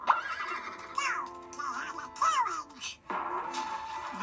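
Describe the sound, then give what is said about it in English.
A horse neighs loudly, a long whinny with shrill, wavering rises and falls that repeats in bursts over a few seconds, with no talking. “But they had their own horses.”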